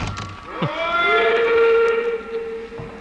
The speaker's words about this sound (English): I stood there on the embankment as the train pulled away.